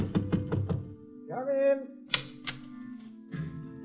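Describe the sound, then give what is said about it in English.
Four quick, solid knocks on a closed door on the third floor of a rooming house, followed by sustained reedy accordion music from behind the door, with a few sharp clicks and thumps. “On the third floor of the rooming house, I heard accordion music coming from behind one of the closed doors. I knocked on it.”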